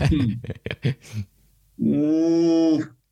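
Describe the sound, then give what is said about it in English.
A person voices a sustained, low, harmonic growl imitating a bear, used as a quiz buzzer, held for about a second after some brief speech-like sounds at the start, then cutting off. “So, the way we'll do this is your buzzer is going to be your very own bear growl.”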